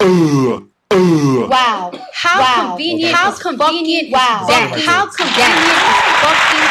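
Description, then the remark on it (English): After several seconds of expressive voices, a loud burst of canned applause takes over, a dense wash of clapping that runs for about a second and a half before cutting off. “I'm gonna cut that applause off.”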